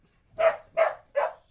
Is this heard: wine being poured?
no